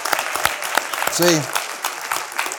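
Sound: audience hand clapping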